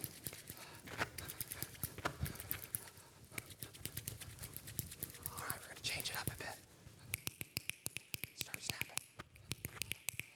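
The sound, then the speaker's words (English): A crowd rubbing their hands together makes a steady, soft rushing hiss like light rain, with many quick sharp taps scattered throughout and growing denser toward the end. “Just rub your hands together.”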